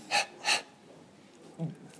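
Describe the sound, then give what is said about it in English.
Two quick, sharp breaths puffed into the microphone in succession, followed by a brief low murmur of a voice. “Look, you're twiddling, you're sitting there in your ridiculous shirt, breathing Cadbury's crunchy fumes all over me.”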